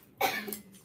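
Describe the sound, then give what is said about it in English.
A single sneeze bursts out sharply and fades within half a second, moderately loud, with no one talking over it. “Bless you”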